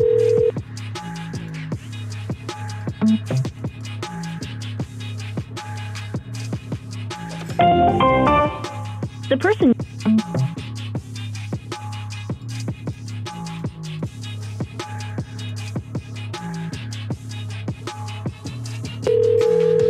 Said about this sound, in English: We need to find one with a really obnoxious ringtone.